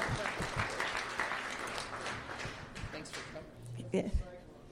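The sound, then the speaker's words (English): An audience claps for a man standing on a chair, a dense, steady burst of applause that fades out near the end, with a few low thumps and a brief voice rising as it dies away. “And if we could give him a round of applause, because he had more ideas than the rest of us.”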